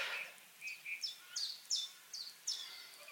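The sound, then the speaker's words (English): A blackbird just above a sunken lane through a little stand of ash trees with bluebells and stitchwort sings a lazy summer warble: a series of about seven short, high, clear notes at a steady, unhurried pace, alone over faint background hiss with no voices. “You can hear the chiff-chaff, and there's a blackbird just right above doing that sort of lazy summer warble.”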